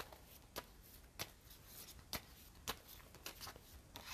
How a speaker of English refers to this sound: Okay, one of these flipped over. Where'd it go? Okay. You know what? I'm going to keep shuffling, and if it comes out, it comes out.